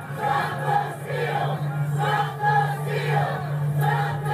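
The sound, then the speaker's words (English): A large crowd of rioters on the east side of the US Capitol roars and chants in steady, loud waves, voices rising and falling in a repeating rhythm over a constant low hum, with no single speaker standing out. “Here's what that crowd looks like on the east.”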